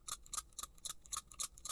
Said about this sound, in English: You mix it 20 to 1 in a little spray bottle like this and you go.